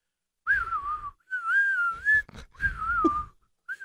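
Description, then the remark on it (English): Someone whistles in three long, wavering phrases separated by brief pauses, the tone sliding gently up and down, alternating between breathing in and out. “Now, did you know whenever you whistle...”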